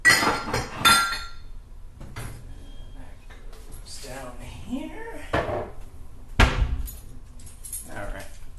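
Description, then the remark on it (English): Metal silverware clinks and clatters as it is put away, in a few bursts, a cluster at the start and sharper clanks later, with a faint voice-like murmur in between. “Put the silverware away and start running some hot water.”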